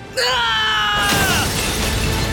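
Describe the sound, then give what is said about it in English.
A loud, sudden smash of a mirror struck with a rock: a ringing, tonal strike that breaks into a bright, noisy shatter of shards lasting over a second, forceful, with no talking. “Before his parents or Hera or the Titans could stop him, Zagreus raised the rock with all his might, took one last look at his parents, and smashed the mirror.”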